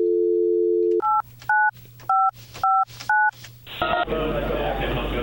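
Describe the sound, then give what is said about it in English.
A steady dial tone hums for a second, then five touch-tone beeps sound in quick, evenly spaced succession as the phone number of a scam caller is dialed to call them back, before a rush of noisy line static takes over. “We got the phone number, and you called them back.”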